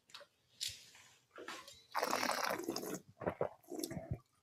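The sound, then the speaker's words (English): Wine being poured away from a glass during a tasting, poured from the bottle, splashes and trickles in uneven bursts, with a longer steady pour in the middle and a few gurgling drips at the end, fairly quiet. “So I shall still pour a bit away and then we will bring on the next two wines.”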